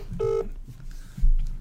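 A single short touch-tone beep from a phone keypad, clear, followed by low rumbling background noise and a soft thump near the end.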